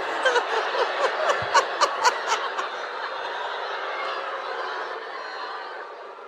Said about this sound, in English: And so I want to know what it sounds like, because we always get like a very warm reception. I want to know what it sounds like when you're getting a really hostile booing at you. So can we... Get off!